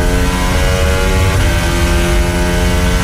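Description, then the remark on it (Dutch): The Formula 1 engine of Alexander Albon's car screams at high revs from onboard during a Grand Prix, loud, its steady high-pitched whine shifting briefly mid-clip before holding on for about three seconds with no voices. “Alexander Albon heeft een auto die een hele hoge topsnelheid heeft. Hier zijn we aan boord bij Alex.”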